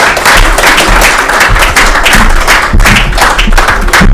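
A loud, steady round of applause from a small group, many hands clapping densely and continuously for about four seconds, close and without any voices.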